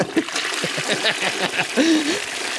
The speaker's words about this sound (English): The patented flush.